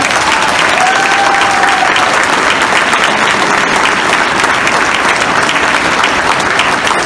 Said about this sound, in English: You know, and I truly want to show my appreciation to the Quiet County Urban League staff. Can we please just give them a round of applause?